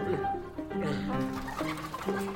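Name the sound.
hen squawking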